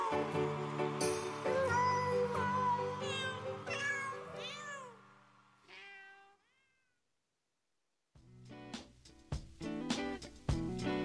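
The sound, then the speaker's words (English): Several domestic cats meow in quick overlapping succession, loud, with rising and falling calls; after a brief silence, another dense burst of short meows follows. “and it wouldn't be the holidays without tinsel hanging out of all of our cats' butts.”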